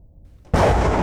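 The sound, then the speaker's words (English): Crackling thunder: a low, faint rumble gives way about halfway through to a sudden loud, harsh crash that keeps roaring and crackling to the end. “And then the tremors get more pronounced and the thunder crackles a bit more.”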